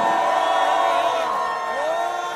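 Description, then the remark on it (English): A loud, sustained roar of a crowd cheering as Monty Montana is introduced before stepping onto a stage, with high whoops and shouts rising above the dense wall of voices throughout. “Make some noise for my man, Monty Montana!”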